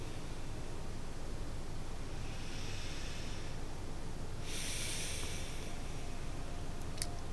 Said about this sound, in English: Into deep breathing.